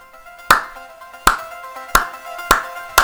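A slow clap: five sharp, single hand claps spaced roughly two-thirds of a second apart, each leaving a brief ringing tail, with no voices.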